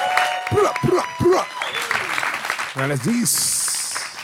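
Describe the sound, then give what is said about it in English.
A crowd claps and cheers as comedian Steve Rannazzisi is introduced on a show, with several loud rising-and-falling whoops over steady applause, then a shorter burst of shouting before the clapping carries on, joined by a high hiss at the end. “Make some noise for the hilarious Steve Rannazzisi in the house.”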